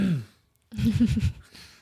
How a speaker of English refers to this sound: Anyway, I didn't mean to cough in the camera or in the microphone. Sorry, we're actually pretty tired right now.